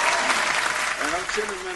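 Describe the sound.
A steady burst of hand clapping, dense and continuous like applause, with a man's voice talking over the second half.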